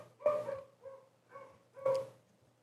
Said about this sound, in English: So actually, one of our first papers was trying to tackle this particular problem. So this is two dogs barking, and we learned how to separate them using AI.